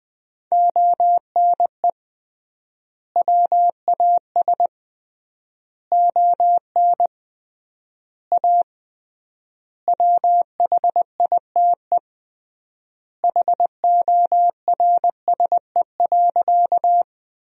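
Morse code at 20 words per minute with 3x word spacing, sending sentences made from the top 300 words: a single steady mid-pitched tone keyed into quick dots and dashes, grouped into words separated by long silent gaps, with no voices.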